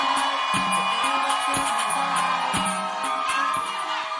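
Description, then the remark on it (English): A large church audience claps and cheers for a testimony and to welcome the next speaker, a dense, steady roar of applause with scattered whoops, and low thumps recur roughly once a second underneath. “Wow, put your hands together for a wonderful testimony. And keep clapping as we welcome”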